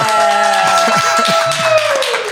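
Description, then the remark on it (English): A studio-audience clap is called for on the show Social Dallas: a brief, dense burst of overlapping hand claps, fairly loud, with a steady tone and some murmuring voices underneath. “Come on, studio yes. audience. Give us a little clap.”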